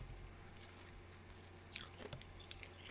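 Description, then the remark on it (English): A man crunchily chews ice, with a few sharp bites and crackles breaking through a steady low hum, no talking. “As he chews ice with the response.”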